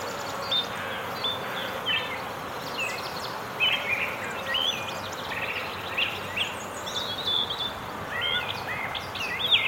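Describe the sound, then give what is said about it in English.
Many birds sing a dawn chorus in the trees of a backyard, chirping in overlapping bursts, while a steady, dense buzzing of bees from a nearby beehive hums underneath throughout, with no voices present. “Well, this orchestration was recorded in my backyard near a beehive, with birds joining in a dawn chorus in the trees nearby.”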